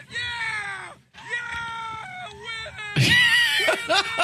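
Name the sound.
child screaming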